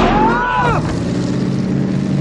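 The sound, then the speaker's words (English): A motorboat engine drones steadily and loudly, a constant low hum over rushing water and wind noise, with a brief raised voice at the very start. “Stop the boat, Larry.”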